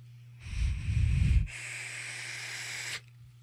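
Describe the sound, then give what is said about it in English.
An electronic vape, a Voltrove on a Def Mod set to 75 watts with cherry lime cola liquid, fires with a steady airy hiss of about two and a half seconds as someone inhales, rougher and crackly at first, then smoothing out over a low electrical hum. “All right, let's try this. Voltrove, cherry lime cola, 75 watts.”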